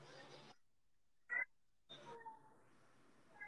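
cat meowing

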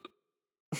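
sneeze

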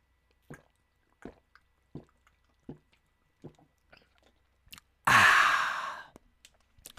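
drinking water

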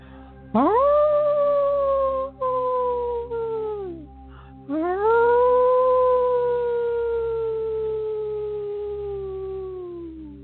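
wolf howling

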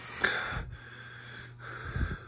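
heavy breathing

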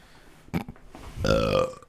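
burp into the microphone

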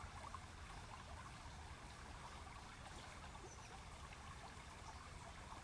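river stream flowing

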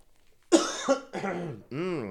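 deep cough

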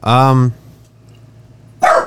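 dog barking

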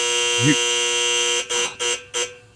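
timer buzzer going off

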